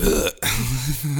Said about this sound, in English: I keep burping during the worst times. I'm trying to say nice things.